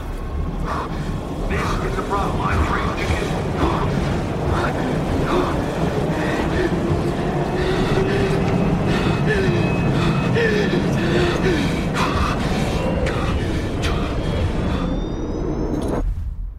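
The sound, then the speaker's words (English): A train at a station, a loud, steady mechanical rumble with intermittent clanks and a thin rising metallic squeal near the end, over a murmur of indistinct voices. “And we were shooting, the scene where Jeevan stepped off the train, having just had the call with Sia, where she explains to him everything that's about to happen.”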